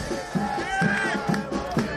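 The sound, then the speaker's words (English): A large crowd of soccer fans chants in unison at a Chicago Fire game, voices holding sustained, sung pitches, while steady rhythmic thumps land about every half second beneath them. “And for the past 20 years, soccer fans have chanted it at Chicago Fire games.”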